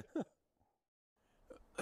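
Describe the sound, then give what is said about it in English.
A short, close-up cough bursts right against the microphone, then a pause before a couple more rough coughing or throat-clearing sounds follow, loud and harsh with no talking. “Can you mute your mic when you cough, please?”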